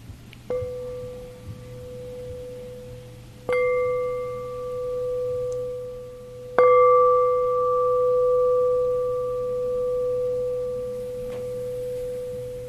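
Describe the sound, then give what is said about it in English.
A meditation bell is struck three times at unhurried intervals, each strike a clear, pure tone that rings on and slowly fades, the last one loudest, over a low steady hum with no talking. “We're doing this as a preparation for this moment when the bell rings.”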